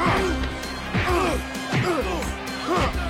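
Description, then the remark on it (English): A run of heavy Foley punch sound effects in a match, roughly four solid thwacks at a steady pace, lands over a constant noisy background with voices talking and shouting underneath. “And the sound effects, the Foley.”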